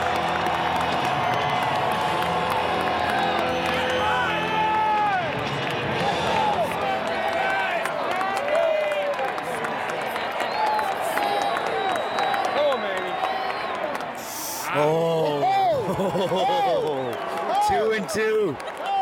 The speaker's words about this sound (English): I hope you're all being able to hear the chants of Manny, Manny, Manny, as Manny Machado is at the plate. And listen to this crowd.